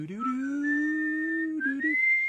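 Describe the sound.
A breathy whistled tune of a few sustained notes, the theme of the video game character Proto Man from Mega Man, sliding up at the start and stepping higher near the end, with a faint hummed undertone and no talking.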